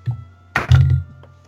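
A d20 hits a tabletop with a sharp thunk, then tumbles in a short, low rolling rattle before settling with a couple of faint clicks. A soft knock comes just before it.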